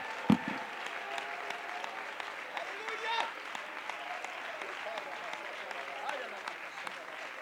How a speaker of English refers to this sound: Let's clap our hands unto the Lord and give God a shout of praise before we're seated. Hallelujah.